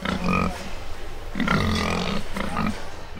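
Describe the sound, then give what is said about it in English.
A pig grunts and snorts in loud, raspy bursts while being weighed on a scale at a livestock show in Lee County, Iowa, with a couple of rough outbursts separated by brief pauses over a low background hum. “And so behind me is a scale, and I'm weighing my pig.”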